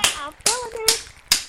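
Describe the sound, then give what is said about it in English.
Four crisp finger snaps and hand claps, given on Big Boo Radio in praise of a track, land in a steady, even rhythm, each a sharp bright crack, with a voice-like tone sounding between the hits. “Finger snaps and hand claps to that, brother.”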